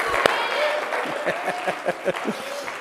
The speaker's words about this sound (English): Stand up and clap your hands and bless the name of the Lord together right now.